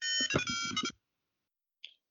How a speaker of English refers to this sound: hold on a sec, phone.